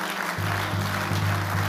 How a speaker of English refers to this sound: If you want to clap, clap.